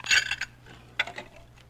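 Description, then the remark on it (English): Dishes clatter as they are stacked and cleared the morning after a big party at Jack Benny's home, a bright cluster of clinks and knocks at the start, then a second, lighter round of chinking crockery after a short pause. “I was too tired last night to get all these dishes, Roy.”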